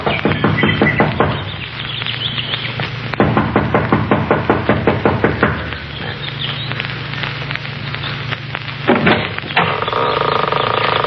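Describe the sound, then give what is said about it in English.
A young woman knocks impatiently on the front door of a small mountain lodge: rapid, insistent knocking on wood in quick bursts, loud, over a steady low background hum with faint outdoor ambience. “Kathy Evans, an attractive girl in her early 20s, gets out of the car, runs up the steps of the lodge to the front door. She knocks impatiently, looking about anxiously.”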